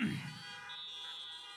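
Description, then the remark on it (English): A single long honk, a buzzy, steady-pitched horn blast rich in harmonics, holding evenly for over a second after a brief rougher burst at the start. “I've never been so glad to be honked at, so thank you for that.”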